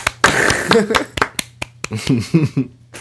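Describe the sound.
A handful of sharp, crisp hand claps ring out at an uneven pace, loud and snappy, with people talking between and under them.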